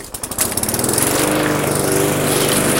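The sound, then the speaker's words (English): A lawn mower engine runs steadily and loudly while mowing a lawn, its rapid pulsing drone sputtering briefly at the start before settling into a continuous roar with no voices. “I'm going to try recording while I'm mowing the lawn.”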